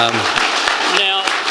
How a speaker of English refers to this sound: So a big round of applause, and say thank you for being so open about the evening. Well done, guys.